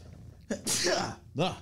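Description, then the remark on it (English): A single loud sneeze, set off by a coat: a quick breathy intake, then an explosive, hissing burst, followed a moment later by a short voiced exclamation. “Oh, man, that coat keeps making me sneeze.”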